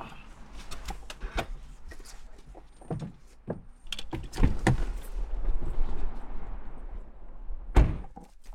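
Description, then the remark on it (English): A car door is opened and shut as someone gets out of the car: a run of clicks and knocks, a heavy thud midway, then one solid slam near the end over a low, steady rumble. No one speaks. “got out of the car and began pacing back and forth with a cigarette.”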